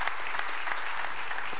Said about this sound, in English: You can give them a little applause. A lot of them, yeah.